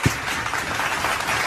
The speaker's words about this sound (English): I want you to give a loud applause for this person.